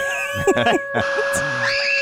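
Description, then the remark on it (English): A voice imitates the howl at Great Wolf Lodge's water park that signals the wave pool is about to start making waves, in a few wavering, pitch-sliding bursts that end on a high rising glide, over a steady electronic hum. “By the way, that howl signifies that the wave pool is about to start making waves, and everybody, when they hear the howl, flock to the pool.”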